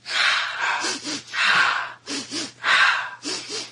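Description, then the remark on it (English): Rhythmic, forceful breath-of-fire breathing repeats in a quick cycle: two sharp sniffs in through the mouth, then one longer, louder exhale, several times in a row, with no talking. “Let's do the breath of fire that I learned, which is 2 sniffs in through the mouth and 1 exhale out.”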